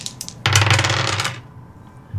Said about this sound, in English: So spending a Benny to re-roll. Yeah. Reroll everything? Reroll both dice.